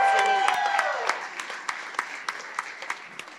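A round of applause: a small burst of clapping that settles into steady, evenly spaced claps, with a brief vocal cheer at the start, gradually thinning out.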